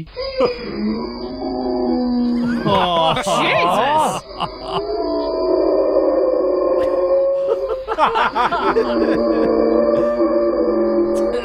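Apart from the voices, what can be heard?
dog howling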